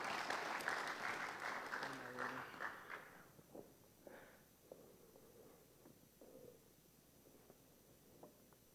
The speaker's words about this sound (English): Guys, can you give them a round of applause? They're being so brave this morning.